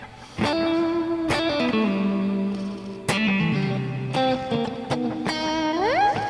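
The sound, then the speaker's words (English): Electric guitar plays sustained, ringing lead notes through an inexpensive delay pedal with the echo turned down, each picked note trailing soft repeats, ending with a rising bend. It is fairly loud, with no talking. “It has a really cool background delay that, like, lead line where you don't need it in front of you, but you need it just old enough to fill you out a little bit.”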